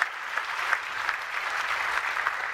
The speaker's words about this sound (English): And so let's give the Lord an applause for what he's done.